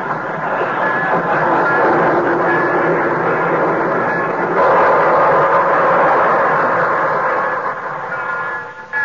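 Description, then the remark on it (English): A train pulling into a station on track six, a dense, steady mechanical rumble and hiss that stays loud for the whole stretch, shifting slightly in tone midway, with no voices. “So try Johnson's liquid wax from Racine, Wisconsin, and Brantford, Canada, where the Torontoan is just pulling in from on track six.”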